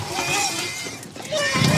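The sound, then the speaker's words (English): A mournful horse cry sound effect used in a film at the moment a creature looks up and is clobbered: a loud, wavering, high-pitched call with sliding tones that rises and falls for under two seconds. “So we put this, the most poignant horse cry I could find, just in that little moment where he looks up and then gets clobbered.”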